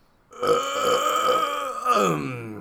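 A long, loud, close-up burp rolls on for over two seconds, deep and croaky with a wavering pitch, heard alone with no talking.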